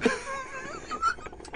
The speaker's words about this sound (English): Did you sneeze long form?